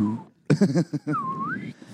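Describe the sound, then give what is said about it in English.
A voice imitates a descending slide whistle: a few quick voiced hoots, then a thin whistling tone that slides in pitch for about half a second before cutting off. “Imagine just getting raped and only having a slide whistle. it never goes back up.”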